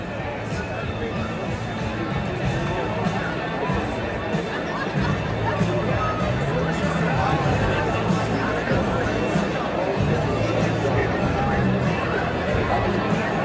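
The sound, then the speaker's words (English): A large crowd of almost 10,000 people murmurs steadily in Edmonton before the event has started, a dense wash of overlapping voices and chatter with no single speaker standing out, holding an even, moderately loud level throughout as people file in. “It was huge, almost 10,000 people. Here's a little video.”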